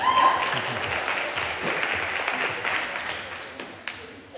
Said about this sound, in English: Yeah, you can clap if you want to.